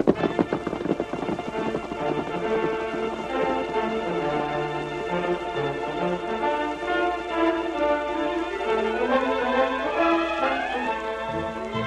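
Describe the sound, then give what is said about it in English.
A horse's hooves gallop away in a steady rhythm as its rider tops a rise, beneath loud, sweeping orchestral music that carries a melody throughout, with no one speaking. “He'll soon be to the rise. He's topping it now. Then it's safe to follow him.”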